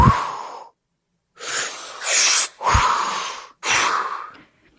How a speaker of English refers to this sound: Begin the sweeping breath. Breathe in through your mouth as you turn your head from center to the left. Suck it in, yeah. And then exhale out your mouth as you turn your head past the center and over to the right.